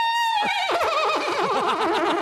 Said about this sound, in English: the next song were these sound bites I had bought off the internet, and one was a horse.